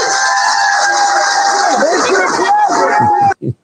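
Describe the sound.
A crowd cheers and chatters for Joe Biden after he announced testing negative for COVID-19 and returning to the Oval Office, in a steady, loud wash of voices, with some higher whoops rising above the din before the noise cuts off abruptly and a couple of brief voice bursts follow.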